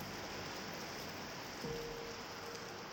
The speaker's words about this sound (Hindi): बारिश फिर से तेज हो चली थी।